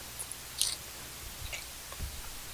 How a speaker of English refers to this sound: I hear a bit of crunch. Uh-huh. Is that the lettuce? Okay. Or is that the last shreds of your dignity?